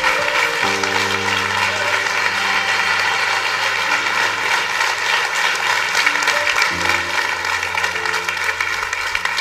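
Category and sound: crowd, church audience applauding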